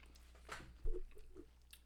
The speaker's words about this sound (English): I keep just chewing you're like, right nom, into nom, nom.